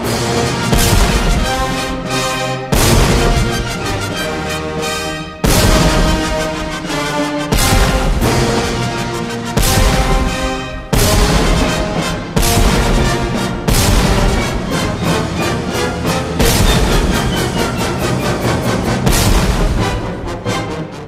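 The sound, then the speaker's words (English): At the end of a piece, a full orchestra plays the national anthem of the Russian Empire, broad and stately, while 11 heavy cannon shots boom out every two seconds or so, each blast loud and cutting through the brass and strings. “the song ends with the national anthem of the Russian Empire at the time of the composition, God Save the Tsar, along with 11 big old cannon shots”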